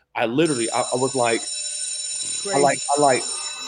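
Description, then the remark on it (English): An alarm bell rings steadily in the background, a continuous high-pitched metallic tone that never breaks, while people talk loudly over it. “I left my body and I was like, you hear the bells in the back?”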